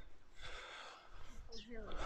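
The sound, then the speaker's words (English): Heavy, labored breathing from someone walking up a steep hill over the top of Brynna, with a couple of effortful, gasping breaths that take on a slightly wheezy, voiced edge, out of breath from the exertion. “So we're going to walk up over the top of Brynna now, but we're going up, as you can probably tell by my breathing, up quite a steep hill.”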